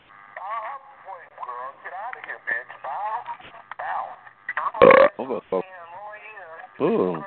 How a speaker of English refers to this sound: Ooh, somebody burped. Okay, nasty. Who's that burp?